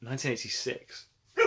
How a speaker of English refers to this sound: Oh, we've got a dog outside.